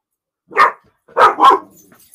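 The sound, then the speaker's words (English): A dog barks three times, one sharp bark followed by a quick pair, loud and clear with short pauses between and no talking. “Quit. Hey. Stop. Demon dog.”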